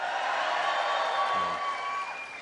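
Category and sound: crowd, audience cheering and clapping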